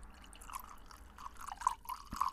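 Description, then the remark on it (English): A drink being poured into a glass, the old TCAC glass: a fairly quiet stream of liquid with small gurgles and splashes for a couple of seconds, and no one talking. “I just poured it out in the old TCAC.”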